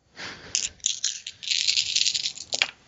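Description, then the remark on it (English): Six dice rattle and clatter across a hard surface for a couple of seconds, a dense, bright clicking that ends with a few final sharp knocks. Alone, no voices. “Brains plus notice, that is 6 dice.”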